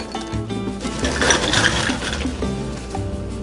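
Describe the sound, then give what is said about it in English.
Ice cubes clatter and rattle into a small cup, filling it, in a dense, continuous tumble of bright clinks, steady for several seconds, with no talking. “I'm gonna fill up this thing with ice.”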